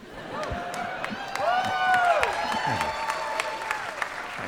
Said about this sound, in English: Now you guys are applause crazy.